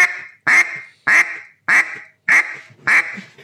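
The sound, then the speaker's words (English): Six loud, evenly spaced quacks blown on a duck call, each a short raspy burst that fades briefly before the next, clear with no talking. “You need to sit there and use that same volume of air, just like you're doing on a quack.”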